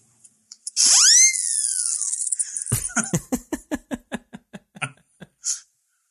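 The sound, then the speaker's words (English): A loud, shrill whistle glides up and then slowly slides down in pitch, followed by a rapid run of about ten evenly spaced puffing clicks and a brief final hiss. “That's a fun whistle.”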